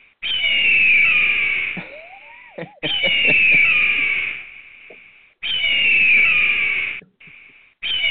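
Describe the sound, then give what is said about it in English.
A loud, harsh eagle screech repeats three times in long, raspy drawn-out cries, then cuts off with one brief final burst. Prominent, with no talking. “Everybody loves a good eagle screech.”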